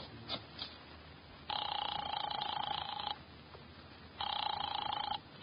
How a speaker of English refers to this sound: I drove down to the document research laboratory on Vanderbilt and got such a shock that I grabbed the office phone and dialed Wolf at once.